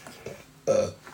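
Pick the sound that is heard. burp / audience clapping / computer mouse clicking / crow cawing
burp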